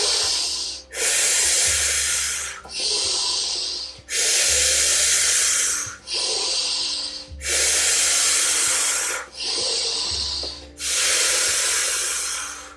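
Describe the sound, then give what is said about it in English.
Deep, rhythmic breathing in through the nose and out through the mouth during the final round of a breathwork exercise, with loud airy inhales and exhales alternating steadily, about eight breaths with brief pauses between them. “Keep going, keep breathing in and out.”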